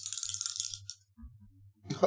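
Dice rolled for powers and weapons in a game rattle and shake for nearly a second, a bright, clicking clatter, then after a short lull a final quick burst of clacks as they tumble and settle.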